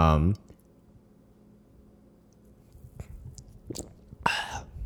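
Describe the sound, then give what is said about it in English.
Gulping swallows of beer in a kitchen, a few soft throat clicks and wet gulps spaced over a couple of seconds, after a short voiced sound at the start. “Yeah, like the sounds of swallowing.”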